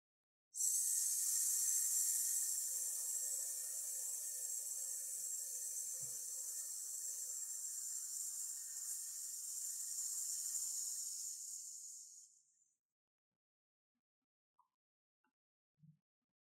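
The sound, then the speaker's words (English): A single long, breathy hiss made with the voice as part of a guided breathing exercise, held steady and fairly loud for about twelve seconds as one continuous exhale, then tapering off into near silence. “Let's hiss again.”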